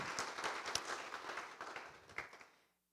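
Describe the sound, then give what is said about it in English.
An audience claps for a young woman who won the Young Leader of the Future award. The clapping is a dense, steady patter of many hands at a fairly soft level, holding for a couple of seconds before quickly dying away into silence. “You can go ahead and clap for her.”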